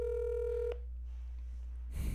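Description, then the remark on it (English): A single outgoing ringback tone buzzes through a phone line for under a second on an unanswered call, then cuts to quiet line hiss with a low hum, ending in a brief burst of noise. “So I'm giving it like a 2 out of 10 chance that he picks up this phone.”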